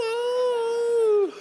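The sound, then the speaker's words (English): A person imitates a coyote howl with one sustained, steady, mid-pitched wail held for over a second, then briefly dropping in pitch as it cuts off. “The coyotes, coyote, no!”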